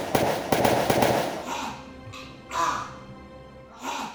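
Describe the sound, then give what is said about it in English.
A quick burst of four or five loud, sharp gunshots from a police officer shooting a man down cracks out in rapid succession, then the firing stops and a few harsh, raspy cries follow in short separate bursts. “You shot him.”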